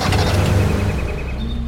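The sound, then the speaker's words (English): A small boat motor hums and whirs steadily as the boat travels through a dark swamp, a loud continuous mechanical drone with a slight rattling texture and no voices. “I traveled these water enough that I wasn't worried about marsh clumps wrapping around the motor.”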